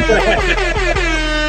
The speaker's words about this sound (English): That deserves air horns.